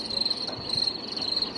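Crickets chirp in a steady, high-pitched trill that pulses continuously throughout, moderately quiet against a faint background hiss, with no voices present.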